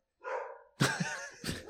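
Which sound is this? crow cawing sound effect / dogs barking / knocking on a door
dogs barking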